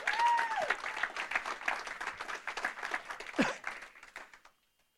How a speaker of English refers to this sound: Can we give him a proper round of applause now?